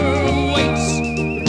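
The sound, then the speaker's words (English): A high, clear whistled melody glides and wavers over a full musical backing throughout a song, holding long sustained notes with slight vibrato and sounding prominent in the mix. “I can't believe we're hearing a whistle solo throughout this song.”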